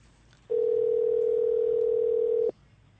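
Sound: telephone dial tone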